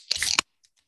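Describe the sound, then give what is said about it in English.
A beer can cracks open with a sharp metallic snap and a brief hissing rush, followed by a couple of faint fizzy ticks, with no talking. “In 3, 2, 1, crack them.”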